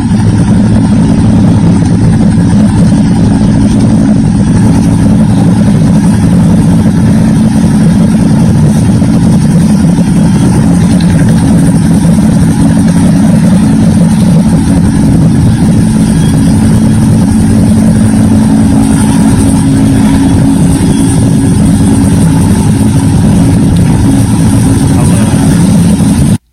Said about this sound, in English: It's what it sounds like. It's a helicopter basically stationed over these kids as they try to play a baseball game or a soccer game. Shows up, does his bit, and then basically leaves.